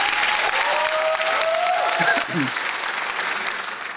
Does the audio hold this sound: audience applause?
yes